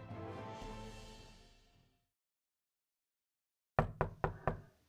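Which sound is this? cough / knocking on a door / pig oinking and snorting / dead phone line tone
knocking on a door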